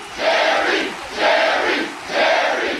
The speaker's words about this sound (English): The crowd chant, that was always good.